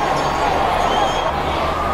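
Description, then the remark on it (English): A dense, loud wall of crowd noise with many voices shouting and calling out at once, sustained throughout with no pauses and a low rumble underneath. “Lots of shouts from the crowd here.”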